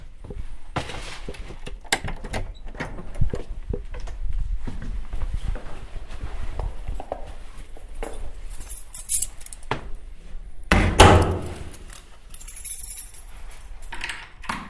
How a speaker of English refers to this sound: I don't seem to be able to lock my door with my left hand. Entirely annoying.